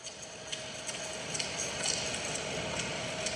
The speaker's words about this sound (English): I'm really puzzled as to, like, what use there would be for air conditioner with Japanese woman talking faintly behind it.